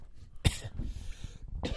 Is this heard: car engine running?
no